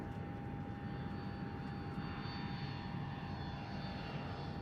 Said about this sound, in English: The plane begins its hasty descent and your stomach drops with the plane. Your mind still imagining the noise was some kind of mechanical failure that would inevitably make landing impossible.